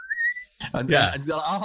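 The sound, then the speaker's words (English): A short, clear whistle slides upward for about half a second, then a voice takes over and talks right after it. “my only memory of this from watching that was the whistling”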